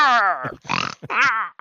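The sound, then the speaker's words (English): A person imitates a pig, voicing a creature being struck in a tabletop role-playing game, letting out high, strained squeals broken by a rough, snorting grunt in the middle. Loud, a few quick bursts with no other talk. “And he's making pig squealing sounds.”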